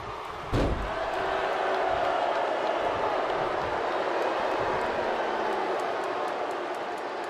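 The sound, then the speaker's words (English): A single heavy thud as wrestler DiBiase slams Jeff Jarrett (Double J) down onto the wrestling ring mat lands early, then a steady, loud crowd roar fills the rest of the scene. “Slams him down.”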